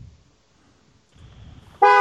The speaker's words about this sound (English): He's honking at me. He's honking at me. He honked at me and I don't like it.